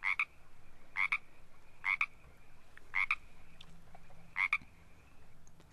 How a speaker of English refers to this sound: And this is really interesting, because this is the classic ribbit, ribbit, ribbit sound, which has led to the Nitterly expression frogging a garment, because you rip it, rip it, rip it back.